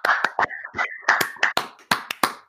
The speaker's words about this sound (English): Dude, I just gave myself a round of applause.